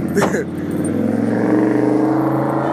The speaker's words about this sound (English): Let the cars go by.